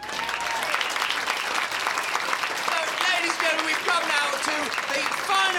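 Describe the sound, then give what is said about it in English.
Sustained audience applause at Wembley, built up for a performer coming on stage, dense and steady throughout, with scattered voices and faint cheering woven into the clapping. “So once again, let's build up the applause.”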